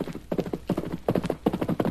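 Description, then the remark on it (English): A horse ridden fast from a ranch by Reynolds: hoofbeats pound in a fast, steady galloping rhythm, each stride a cluster of sharp thuds, fairly loud and continuous throughout with no voices. “Him ride from ranch and him ride fast.”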